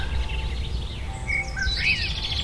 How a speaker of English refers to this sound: Isn't that a lovely, lovely sound? Good morning. The sound of birds tweeting in a wood and the distant bells of a French Catholic church. Listen again.